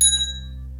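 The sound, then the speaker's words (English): A single bright ring of a small hand bell with a Ouija board on it, high-pitched and metallic, struck once and quickly fading, with a low steady hum beneath it and no voices. “I'm just going to ring the bell because it said a Ouija board on it, and this is going to be our bunk bed / Ouija board bell.”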